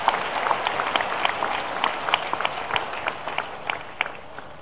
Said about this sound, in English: Put the hands for Jesus Christ. Applaudissez pour Jésus Christ.